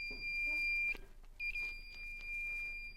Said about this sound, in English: So I've got our fun little sound ball here. I call it the Doppler ball. It's got a buzzer inside of it that will play a particular frequency.